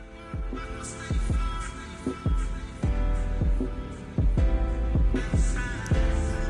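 A hip-hop track plays, with booming, pitch-dropping 808 bass hits landing in a steady rhythm beneath sustained synth tones, loud and continuous with no clear vocals.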